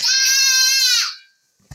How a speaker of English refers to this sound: And sorry, you guys have probably just heard my daughter yell through the speaker there.